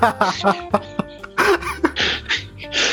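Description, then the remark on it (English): A loud run of rough coughing from a person with a cold, several harsh bursts in quick, uneven succession with brief throaty pauses between them, no words spoken. “And then now I'm back this week with my cold and my cough.”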